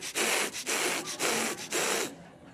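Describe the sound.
A voice imitates the labored breathing of a dog standing on tiptoe at a high window: about five quick, loud, raspy huffs in a steady rhythm, with no words, then a sudden stop.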